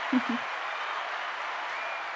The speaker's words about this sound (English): Applause one more time, just for good measure.